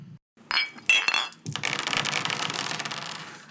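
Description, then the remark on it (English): Glasses clink together sharply a few times near the start, ringing bright, then a dense, bustling wash of sound swells and carries on steadily to the end; it is the bumper for a segment called Drink of the Week. “You heard the bumper.”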